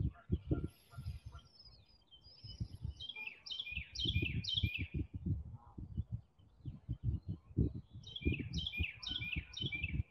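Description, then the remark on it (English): Birds chirp and sing outdoors in quick, repeated bursts of high notes while dense low bursts of noise pulse steadily underneath. “Birds.”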